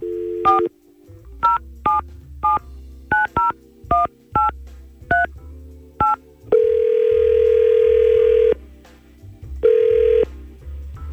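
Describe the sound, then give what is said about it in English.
About ten quick touch-tone beeps dial a phone number to call a woman, followed by a long, even ringback tone and the start of a second ring as the call rings out. No voices. “Maybe we can get her on the phone and see if there's a reason why she's been MIA.”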